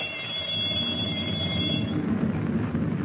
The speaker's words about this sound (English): In the control compartment, he holds Captain Denning at gunpoint while the torpedo firing alarm bell rings through the steel hull.